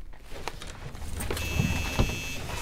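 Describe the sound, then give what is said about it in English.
Inside a van, a low engine rumble underlies a few sharp clicks and knocks, then a steady, high mechanical whine joins partway through as the van is driven to a better spot. No one speaks. “Let me at least move the van to a better spot.”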